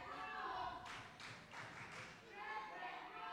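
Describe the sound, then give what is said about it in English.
A wrestling crowd chants "Champagne rules" in unison while clapping along in a steady rhythm, four or five sharp claps landing under the sustained voices. “And the crowd is chanting Champagne rules.”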